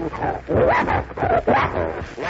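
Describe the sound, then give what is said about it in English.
A bloodhound named Vince barks and yips in a quick run of loud calls, several overlapping bursts with whiny, high-pitched edges, filling the short stretch with no pauses. “Vince, that's a nice name, and you're a bloodhound, are you? Smart little doggy.”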